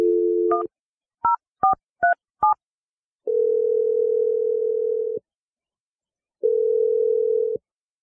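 A steady dial tone gives way to five quick touch-tone beeps as the radio show Brooke and Jeffrey in the Morning dials a man's phone number, followed by two long ringback tones. Clear, no voices.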